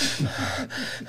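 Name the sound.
imitated heavy breathing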